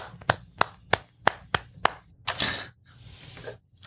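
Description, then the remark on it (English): Six sharp hand claps at a steady, even pace, given in approval of a wine being tasted, followed by a louder, rougher burst of noise that trails off into a softer hiss. No one speaks. “I think that that I can give it a little bit of a clap here.”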